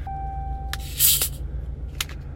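A carbonated water can is cracked open: a sharp metallic click, then a bright burst of fizzing hiss lasting a moment, followed by another small click, over a steady low hum.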